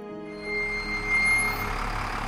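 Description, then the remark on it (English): A large bus rumbles, its engine droning steadily and swelling briefly as it pulls up, with a breathy brake hiss mixed into the noise. “The bus was here.”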